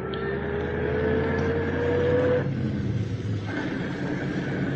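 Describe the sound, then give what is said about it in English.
A steady engine rumble with a rising whine, like a car driving along at speed, loud and continuous with no voices. “Nice to be driving a car again.”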